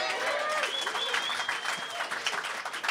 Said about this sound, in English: Yeah, round of applause, yeah.